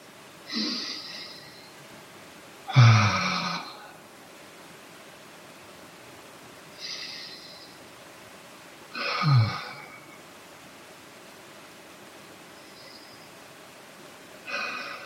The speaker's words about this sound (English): Can we come back to the body? Just noticing physical sensations in the body. Maybe taking a couple of deep breaths.